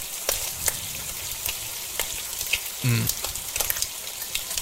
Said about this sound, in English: Okay, for my third pick, I am going to take one that not only has a good sound, but a good smell, and that is the sizzle of bacon.